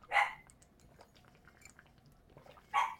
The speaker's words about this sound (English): Why is there a yipper? It's the dog. I know that, my guy. Well, you asked why. why is there a yipper? Yeah, because of the dog. I don't know why the dog is barking though.